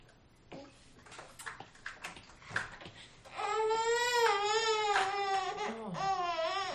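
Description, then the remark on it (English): A few seconds of soft clattering and handling noises, then a baby bursts into loud, sustained wailing, its pitch wavering as the cry continues without pause. “It's like, the human kitten is making noise.”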